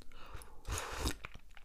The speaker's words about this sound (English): I'm going to have a little sip of my tea. I have Earl Grey and lemon.